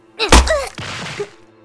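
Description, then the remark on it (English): A single loud, sharp whack as a pistol held by the barrel strikes a woman on the side of the head, with a brief pained cry and a short scuffling, noisy tail before it fades. “Hold it by the barrel. Yes, like that. Now, give her a nice whack to the head.”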